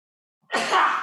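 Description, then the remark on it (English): A single loud, forceful sneeze bursts out suddenly after a moment of silence, a harsh, breathy blast with no talking around it. “Man, that was a sneeze that took me close to my death.”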